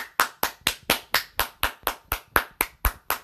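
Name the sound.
hand clapping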